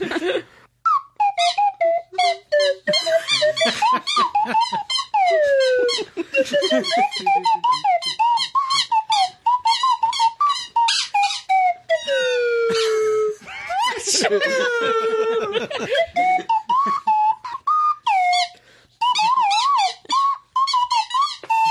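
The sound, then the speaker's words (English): Buzzy, nasal kazoos play a melody together, their reedy tones rising and sliding between notes in a steady, loud stream for about twenty seconds with only brief gaps. “Right, so who else has got a kazoo?”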